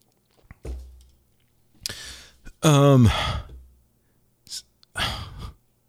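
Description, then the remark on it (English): Someone takes a quick sip of beer, with short breathy slurps and gulps, followed by a loud, satisfied voiced exhale and a few more soft breaths. No talking. “So let me just take a real quick sip and figure out what the hell I am talking about.”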